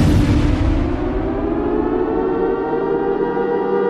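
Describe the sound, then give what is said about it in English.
Sirens blare in a loud, continuous wail, a steady droning tone layered with rumbling noise that holds for the whole stretch without pause, with no voices. “That's right, the sirens are still, we can't shut these fucking sirens off.”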